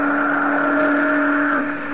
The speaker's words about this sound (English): But a few hours later, when we picked our way carefully into Mesima Straits, it was her steam whistle that caught our attention.